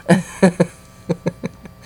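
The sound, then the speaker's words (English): Keypad tones as a phone number is dialed: six short beeps in two quick groups of three, moderately loud and alone with no talking. “You got the phone number ready?”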